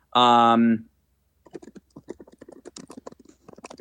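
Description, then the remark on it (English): A brief voiced hum opens, then rapid, irregular clicking of typing on a computer keyboard follows, fairly crisp, with keystrokes tumbling in quick uneven bursts. “Apologize, you guys can hear my typing.”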